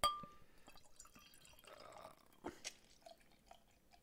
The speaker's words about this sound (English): Awkward to pour from this angle. Looks and sounds like motor oil. It is thick. It is, it's a thick one. That head's amazing.